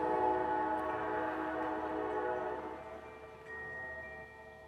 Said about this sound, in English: I'm gonna let this train go by.